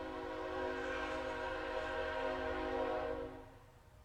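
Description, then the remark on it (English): A train horn blares with a sustained, harmonic-rich tone over the low rumble of a passing train, holding steady for about three seconds before fading away. “That train always makes me think of salvation.”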